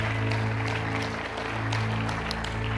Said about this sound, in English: One more time, can you clap your hands and thank the Lord for them?